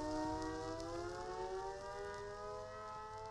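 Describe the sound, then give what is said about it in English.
A loud, continuous alarm wails like a civil defense siren, holding a rich, buzzing tone whose pitch sags slightly over a few seconds, with a low rumble underneath and no voices. “Cue various alarms and impact sound effects.”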